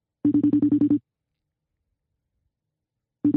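A phone line rings on an outgoing call to a friend, with a buzzy, rapidly pulsing tone in a short burst, then a long silent gap before the next ring starts. The ringing is clear, with no talking.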